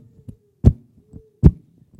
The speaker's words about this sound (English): Someone described the heartbeat as a muffled drum beating a funeral march to a grave.